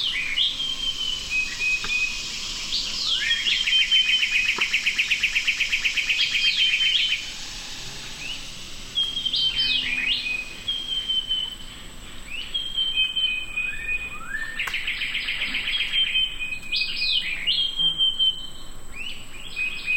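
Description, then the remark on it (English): A dense dawn chorus of overlapping high chirps, trills and whistled bird songs, with a steady insect buzz and low amphibian calls underneath, recorded at Big Cypress Preserve in the Florida Everglades, continuous throughout with no talking. “Lang Elliott and Ted Mack recorded this dawn chorus of birds, insects, and amphibians at Florida's Big Cypress Preserve.”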